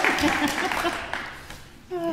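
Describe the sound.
A crowd applauds with dense, steady clapping that gradually thins and fades, and a voice begins speaking just as it dies down.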